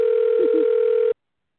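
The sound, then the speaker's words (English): A phone call's ringing tone as someone calls a person to ask him to sing a song: one steady, continuous electronic beep heard through a thin telephone line, lasting about a second before cutting off abruptly into silence, with a faint murmur briefly underneath. “He probably won't even answer the phone, but we're going to try.”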